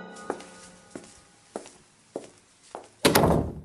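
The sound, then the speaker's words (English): Five evenly spaced footsteps walk away as someone leaves, then a loud, heavy door slams shut with a booming impact that rings out to the end. No one speaks. “At least he used the door to leave.”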